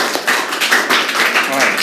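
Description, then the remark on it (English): A crowd claps steadily for about two seconds, a dense, even wash of many hands with a few voices cheering and calling out over the applause, an audience voting by applause in favor of a dance class. “All right, just by applause, how many of you are in favor of a dance class with our buddies?”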